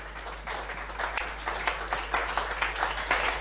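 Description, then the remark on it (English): A crowd applauds steadily for the Lord as God's servant is welcomed to the altar, many hands clapping in a dense, continuous patter with small irregular surges, moderately loud and without any voices over it. “Put your hands together for the Lord and let's welcome God's servant to the altar.”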